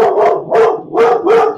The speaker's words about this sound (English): Sometimes my dog Ty will bark and have a conversation with Carol Ann's dog, whose name is Sugar.